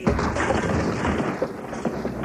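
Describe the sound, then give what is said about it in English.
A sledgehammer knocking through a wall during home improvements: dull, heavy thuds land irregularly over a steady, rumbling crunch of crumbling masonry and falling rubble, with no voices. “I'm just knocking through this wall here.”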